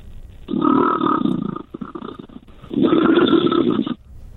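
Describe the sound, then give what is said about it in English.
A man imitates a lion's roar into a pint glass, giving two long, loud, hollow growling roars with a short pause between them, resonant with no other talk. “Do you ever phone up anyone just as a lion”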